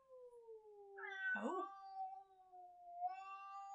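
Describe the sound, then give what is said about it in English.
A cat, one of four in the house, yowls in a long, drawn-out caterwaul with a warbling, rising break in the middle, then carries on in a steady moan, the noise it makes before bringing up a hairball. Fairly loud, with no talking. “There's four cats in here and they're all having enough time.”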